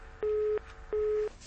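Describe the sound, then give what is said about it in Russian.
Two evenly spaced, steady beeps of a telephone line tone after a dropped call, each lasting about a third of a second, sounding clearly over a faint background hiss with no talking. “Что-то оборвался. Телефонный звонок оборвался”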